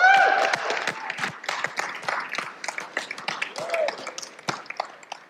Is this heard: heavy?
no